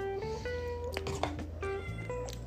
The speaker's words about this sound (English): What do you want? My cat's crying. You can't have any of this. Sorry. No.